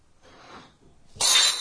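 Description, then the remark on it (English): A wine glass falls from the edge of a counter and smashes on a hard floor, a brief rustle then a sudden loud, bright shattering crash with tinkling shards, with no talking. “And it just moves and falls on the floor and breaks.”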